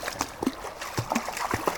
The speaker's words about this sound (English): You know, you're just kind of ruining this wonderful babbling brook.